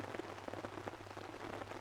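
Steady, heavy rain patters densely onto the overhead canopy of an oak, sweet chestnut and beech woodland on a steep hillside, a continuous hiss broken by countless sharp drips, with no voices.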